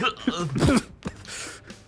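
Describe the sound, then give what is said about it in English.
A person vocally imitates a rough, gurgling cough, as if coughing blood, with a strained voiced burst followed by a shorter raspy hack. “Zane's using his action to cough blood on the bridge”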